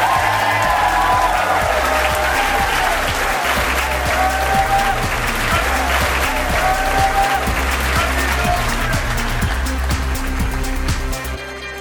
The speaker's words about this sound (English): All right, let's have a round of applause for all of you.